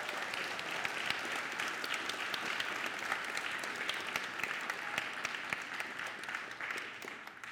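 A church audience applauds a family just welcomed as new members, many hands clapping in a dense, even patter that holds at full strength for several seconds before easing slightly at the end.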